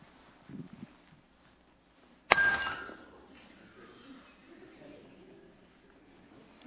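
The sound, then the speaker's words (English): An old drinking glass shatters in one sharp crash, followed by a brief ringing tone and scattered tinkling that fade within about a second. A faint low murmur comes just before. “Qu'est-ce que le verre a fait? Now what does the glass did? Falling apart. The glass has falling apart.”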